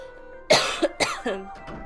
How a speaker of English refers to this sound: Excuse me. I had to cough.